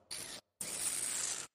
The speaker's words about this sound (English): I'm doing that spritzing thing where you spread it. You try to spray it to the all points of your mouth, and it actually works because your whole tongue gets engaged.